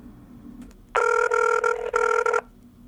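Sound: outgoing phone call ringing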